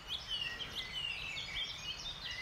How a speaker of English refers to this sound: But around me right now, I can hear a chiff-chaff again, going chiff-chaff, chiff-chiff, chaff-chaff, chiff-chiff, chiff-chiff, chaff-chaff, chiff-chiff. There's a great tit going teacher, teacher, teacher, teacher, teacher.